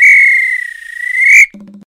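A referee's whistle, blown to signal the end of a match, sounds one long, loud, shrill blast with a slight trill, then cuts off, followed by a brief low buzzing tone.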